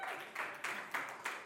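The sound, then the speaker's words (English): A quiet round of applause from a small crowd of audience members who answered 0 to 5 yeses, a steady wash of clapping with soft swells recurring about every third of a second, and no talking. “So who was 0 to 5 yeses? Let me hear a round of applause.”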